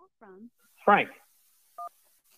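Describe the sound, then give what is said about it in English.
A single short, clean telephone keypad beep rings out after a couple of brief vocal sounds as a caller is put through on a call-in show's phone lines, then the line falls quiet. “Let's jump to the phone lines.”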